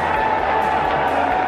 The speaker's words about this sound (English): You're hearing fans applaud the decision as they have heard it, I guess, on radios.